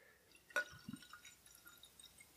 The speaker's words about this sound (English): Okay, so we're going to pour this in a glass here.